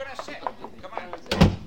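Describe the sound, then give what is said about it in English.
People talk briefly, then a door is heard near the end, closing with a single solid thud that briefly rises above the voices. “Come on, through this door.”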